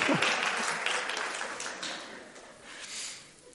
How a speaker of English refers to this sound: Christmas is about good news of a Saviour. They applaud that.